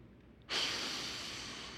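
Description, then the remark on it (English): A single deliberate breath, a breathy rush of air that starts suddenly after a short quiet pause and holds steady, slowly fading, with no talking. “Did you know receiving and being filled with the Holy Spirit is as simple as breathing?”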